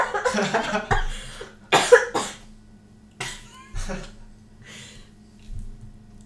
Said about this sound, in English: Well, I needed to cough, but I couldn't go anywhere.